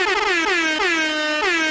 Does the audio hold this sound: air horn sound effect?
yes